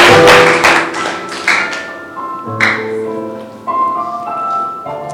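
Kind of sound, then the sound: crowd, audience clapping hands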